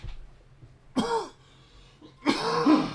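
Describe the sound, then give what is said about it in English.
Two harsh, phlegmy coughs with throat clearing, about a second apart, loud against a quiet background, with no talking, from a person sick with strep throat and probably bronchitis. “That gross ass cough was a pretty good, a pretty good start.”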